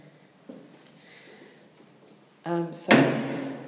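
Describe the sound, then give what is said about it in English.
A security guard on patrol at the Barbican Arts Centre in London shuts a door that was found open: a brief creaking groan, then a loud, solid thud, after a few seconds of quiet. “I just found a door open and it shouldn't be open.”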